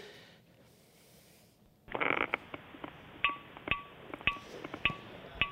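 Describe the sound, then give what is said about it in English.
Crunchy footsteps on a hard, brittle salt crust begin after a quiet moment, fairly loud, each step a sharp glassy crackle falling into a steady walking rhythm. “So it's like walking on glass, or at times that it sounds like you're walking on crunchy armadillo skins for hours or for days, and you're setting your camp out in these salt ridges.”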